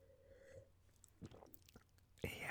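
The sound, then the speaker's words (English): Someone takes a sip of a Paso Robles pour: soft, quiet mouth and swallowing noises, then a louder, breathy slurp near the end. No one speaks. “Well, here's the pardon pour sip.”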